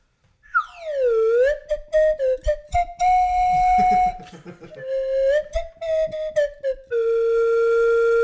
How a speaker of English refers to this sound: You really got to put some slide whistle into that song. Oh, just overdub it. One slide whistle to take us out.